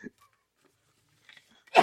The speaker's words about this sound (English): Bless you.